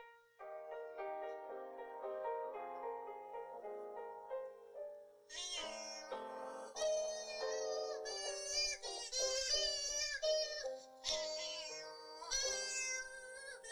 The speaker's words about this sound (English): Basically, he has a bunch of stuffed animal kitties, and they are not stuffed. They're not taxidermy. They are plush kitties that have different sounds in them. So here is the cat organ played by the inventor of the Sharpsichord, Henry Dagg.